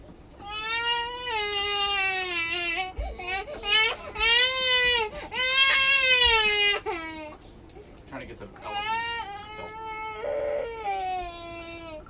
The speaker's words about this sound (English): Did you realize Daddy was trying to help you just then when you screamed louder?